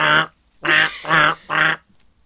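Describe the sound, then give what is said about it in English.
Four low, raspy duck quacks in a steady, evenly spaced rhythm, each short and nasal with a phlegmy rattle, loud with brief silences between them. “It's like those, like, duck calls where, like, it's broken and it's, like, sniffing.”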